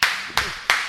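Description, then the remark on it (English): Three sharp hand claps land at an even, unhurried pace, each one bright and crisp with a quick fade. No voices or other sounds accompany them. “Round of applause.”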